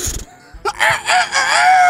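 A loud rooster-like crow rises and wavers in a strained, harmonic call for about a second, preceded by a brief low burst of noise.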